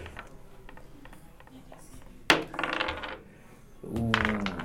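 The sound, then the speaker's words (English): Force dice are tossed and clatter onto a hard surface in a sharp burst, rattling and settling for about a second, followed by a second rolling clatter with a faint voice underneath. “So go ahead and roll however many force dice you have in force rating.”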